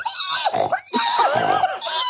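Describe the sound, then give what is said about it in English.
A person imitates a pig's scream: two loud, shrill squealing bursts with wavering high pitch and a brief gasp between, no other talk. “Is it bad to ask for the pig impression or? No, I'm happy. I do pig on command.”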